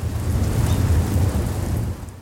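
A deep, steady rumble of thunder during a lightning storm rolls on for a couple of seconds, heavy in the low end with a soft hiss over it, easing off only near the end.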